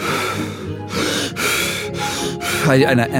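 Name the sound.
forceful rhythmic breathing technique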